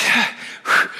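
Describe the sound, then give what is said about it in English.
Two heavy breaths blown right into the microphone, a rough airy rush followed quickly by a second louder one, with no talking. “am I like really windy right now? I'm breathing a lot more than I usually do.”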